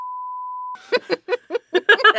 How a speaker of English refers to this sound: I usually say the name of the movie, so Steven has at least one beep.